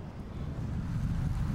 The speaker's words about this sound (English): It's the best part of it, just seeing the state from a bike. You're gonna notice things like the wind.